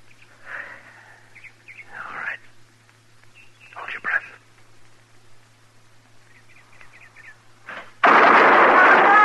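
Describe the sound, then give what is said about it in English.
Scattered faint bird chirps over a steady low hum, then a sudden loud burst of gunfire erupts near the end and roars on without a break. “And then fire.”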